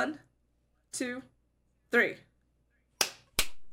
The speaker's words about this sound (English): All right. Let's end on clap sync. We'll give them 2. All right. I'm going to count it down this time.